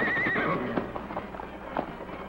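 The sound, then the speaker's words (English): A horse named Silver gives a short, wavering whinny, followed by several uneven hoof clops on hard ground as the horses are led on foot down a steep canyon descent, moderately loud, with a steady low rumble underneath. “a canyon whose sides were so steep that the masked man and his companions were forced to dismount and lead their horses down the perilous descent.”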